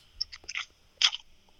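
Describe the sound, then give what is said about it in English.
A can of Bud Light Premier beer cracks open: a few crinkly metallic clicks, then a sharp pop with a brief fizzy hiss, with no talking. “Let me crack this Bud Light Premier, though.”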